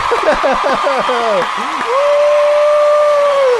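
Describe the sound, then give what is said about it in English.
A voice imitates a cheering crowd during an Xbox gift card giveaway, with a run of quick rising and falling whoops, then a long held shout, over a steady hiss of applause-like noise. “Crowd. Yeah!”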